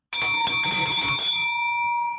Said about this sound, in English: I'm going to rip that thing off. That bell's on its last days. I'm being very, very gentle.